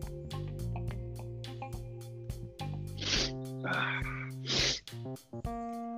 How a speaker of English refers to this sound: I gotta sneeze.